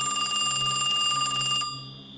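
telephone ringing

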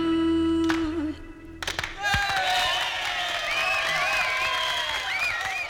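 crowd applause and cheering

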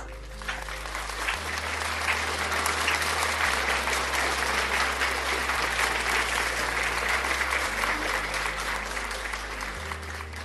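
audience applauding

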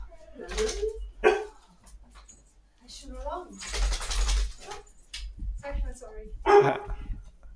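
dogs barking

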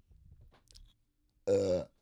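burp

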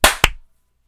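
hand clap

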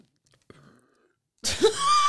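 loud burp

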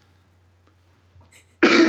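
sneeze

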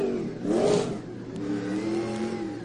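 race car engine revving

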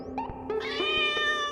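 cat meowing

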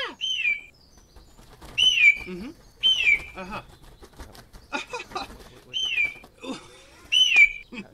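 hawk call

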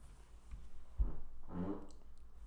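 fart

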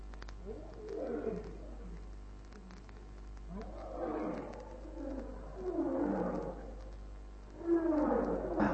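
lions roaring

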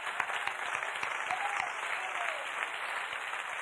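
audience clapping hands

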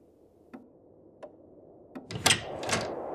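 cabin door opening

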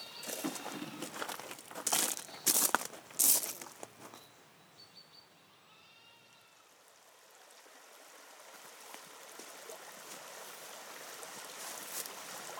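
river water flowing

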